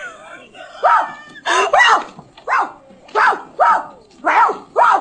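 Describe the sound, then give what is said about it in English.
A woman imitates a dog in a movie scene, letting out about seven loud, harsh barks in a steady, rhythmic series, clear with short pauses between each one. “It says there's a place that you can touch a woman that'll make her bark like a dog.”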